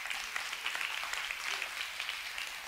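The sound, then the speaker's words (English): A church audience applauds steadily for a few seconds, a dense, even wash of many hands clapping with no pause and no voices standing out above it. “Come on, y'all can clap for that.”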